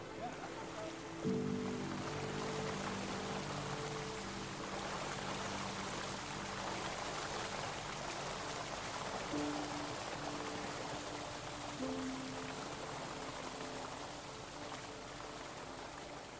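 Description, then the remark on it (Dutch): A pump pours water steadily onto an ice rink in Ruinen, Netherlands, so it can freeze: a continuous rushing and splashing, with a low droning motor hum coming and going underneath. “De pomp gaat uit, zodat het water tot rust kan komen en kan bevriezen.”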